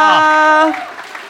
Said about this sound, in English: And why don't we keep that applause going? We get our next guest on stage.